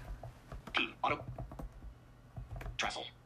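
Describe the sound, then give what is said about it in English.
Typing on a non-mechanical tablet keyboard cover with clicky keys: a run of quick, clacky keystrokes in irregular bursts, with a brief pause before a final flurry, over a low steady hum. “Now, as you can tell, the keys are clicky-clackety, so it's not a mechanical keyboard, but it does have really good key travel.”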